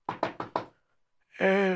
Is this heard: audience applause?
no